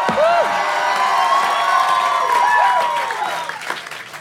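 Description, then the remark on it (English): A crowd cheers and shouts loudly and continuously, with whoops and rising yells over a dense wash of applause that holds steady before tapering slightly at the end. “Come on, straight from the crowd. Make some fucking noise.”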